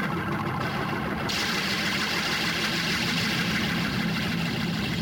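Organ reverb springs crash and clang together as the organist rocks the instrument back and forth, making a loud, continuous roaring rumble that turns brighter and harsher after the first second, with no voices.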